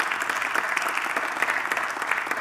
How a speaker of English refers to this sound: Our church took a next step. Yeah, you can clap on it.